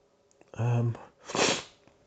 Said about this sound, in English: Jeez, got the sniffles bad. Anyway, but it's not COVID because sniffles isn't a COVID symptom. Forgetting that, I can feel I've got a bloody blocked nose.